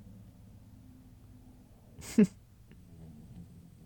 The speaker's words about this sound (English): And yes, my dog is snoring in the background.